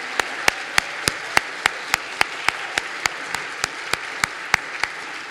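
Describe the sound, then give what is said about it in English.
An audience applauds five storytellers steadily, a dense wash of clapping with sharp, evenly spaced claps standing out in a regular beat. Nobody speaks. “Could we all applaud our five storytellers just one more time?”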